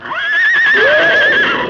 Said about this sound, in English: With a sudden scream of rage and defiance, the courageous stallion sprang forward.